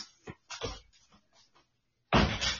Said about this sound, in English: Excuse me, I've got to close my door so I don't disturb my wife.